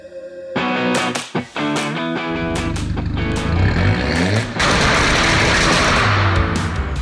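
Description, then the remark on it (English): Jamie Hernandez's Volkswagen Beetle engine sputters and revs with sharp cracking pops, then settles into a loud, steady rumbling roar with a buzzy, rough tone. No one speaks. “Those car sounds are courtesy of Jamie Hernandez.”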